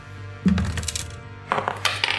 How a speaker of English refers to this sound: I'm roll D12 and I'll still win. Good, I rolled a 9 on top of D6. It did pop up re-roll. Right up from there. Oh, I rolled a 10. I got an 18.